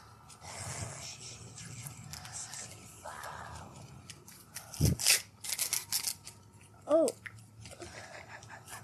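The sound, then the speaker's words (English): Scissors snip through a crinkly foil card pack, a quick burst of several sharp, crunchy cuts following a stretch of soft rustling and handling noise. “We might need some scissors.”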